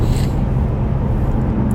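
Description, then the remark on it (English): A steady, loud low-pitched rumble of a car cruising at highway speed on an interstate through a construction zone with a truck alongside, the road and engine noise droning evenly throughout with no voices. “The joys of driving while podcasting. Yeah. On a construction zoned interstate.”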